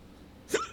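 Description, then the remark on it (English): A single sharp, fairly loud hiccup, a quick vocal gulp that cuts off abruptly after a moment of near silence, with no talking around it. “I knocked them hiccups out”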